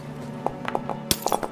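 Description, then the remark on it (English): A quick scatter of sharp glassy clinks and tinkles, about six hits over a second and a half with one louder crack near the end, like glass breaking. “That's Where's a lot of glass breaking.”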